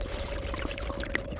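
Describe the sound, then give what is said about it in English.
Someone sips water through a straw connected to a spacesuit's in-suit drink bag holding 32 ounces of water, a steady, wet gurgling draw with a few brief bubbly pops, fairly quiet and with no talking. “Our spacesuits are designed so that we can drink through a straw connected to an in-suit drink bag that holds 32 ounces of water.”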